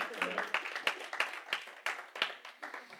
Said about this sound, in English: Thank you for the applause back there.